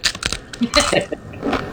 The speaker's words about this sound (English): Okay, so here's your Lady Dorito clip. Let's go. Okay. I've been eating Doritos the whole time. Just to make the point.